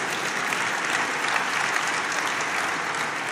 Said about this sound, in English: Yeah, y'all can clap for that. Yeah, y'all go ahead. Absolutely.